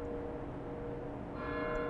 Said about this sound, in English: As you kind of think and look around, you actually hear the toll of the tower clock nearby, and it tolls 6 times.